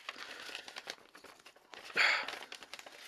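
Paper crinkles and crackles in a steady run of small scratchy bursts, then gives one louder ripping tear before the rustling carries on more quietly. Nobody speaks.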